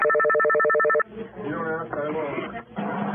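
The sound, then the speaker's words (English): An outgoing call to 911 rings with a steady, buzzy electronic tone for about a second, heard through the line, before it cuts off and an emergency dispatcher starts speaking over the phone. “… told Sango she just called the police to report something about a stolen truck.”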